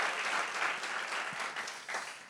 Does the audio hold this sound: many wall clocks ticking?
no